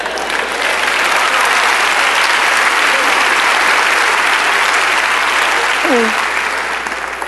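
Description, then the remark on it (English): A large audience claps steadily for several seconds, a dense, loud wash of applause, with a brief faint vocal sound near the end. “Y'all was clapping on that job thing.”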